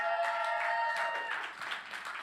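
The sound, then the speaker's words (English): A church audience claps steadily for a young woman coming up to share her testimony, a dense wash of many hands that fills the whole clip with no clear individual claps, over a faint sustained tone. “Give her a hand clap as well.”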